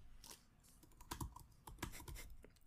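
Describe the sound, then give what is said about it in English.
Rapid, irregular clacking of computer keyboard keys, crisp, with a few louder strikes mixed into the steady patter; no one speaks. “No typing to look it up.”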